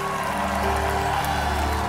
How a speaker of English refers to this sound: Now, if you received everything that happened on Revival Wednesday, I want you to give the Lord a clap and a shout.